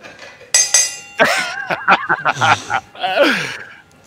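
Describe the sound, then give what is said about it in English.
Two quick, bright bell strikes ring out one after the other with a lingering metallic tone, marking the move to the next item on a WWE report; then a voice takes over, speaking or shouting in a rising and falling pattern. “All right, let's move on to the next item on the WWE report. Bell.”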